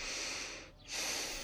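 A loud, airy sniff as someone draws a deep breath of fresh air in through the nose, dipping briefly midway before the rushing airflow swells again. No one speaks.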